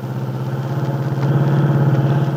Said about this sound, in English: It is Sunday afternoon. Dell Shipley, with Aunt Mary on the seat beside her, is driving her car toward the Lane Farm on Willow Road.